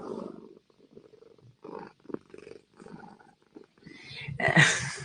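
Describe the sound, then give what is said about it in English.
A domestic cat purrs loudly, a steady rumbling purr with breathy pulses that swells louder near the end, while the cat walks over a computer keyboard. “My cat is walking all over the keyboard.”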